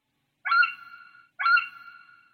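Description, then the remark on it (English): A bird gives two single-note hoot calls, one after the other, each a steady mellow tone with a sharp start and a gently fading tail, with silence around them. “As you can hear, it's just one note, and it really does sound like hoot or hot.”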